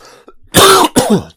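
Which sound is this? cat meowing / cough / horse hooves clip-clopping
cough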